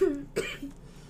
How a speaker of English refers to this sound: Ooh, my first cough of the episode. That was good.